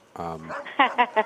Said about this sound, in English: Oh, goddamn dog.